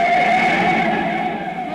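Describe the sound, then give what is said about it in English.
A loud, sustained tire screech as a car skids hard and almost hits a truck, a steady high squeal with harsh noise beneath it that holds for a couple of seconds and fades slightly. “See what happens when you don't behave? We almost hit that truck.”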